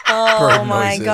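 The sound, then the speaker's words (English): A loud chicken clucking effect, a continuous run of nasal, pitch-shifting squawks lasting just over a second with no talking. “I love the bird noises.”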